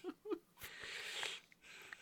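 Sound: yawn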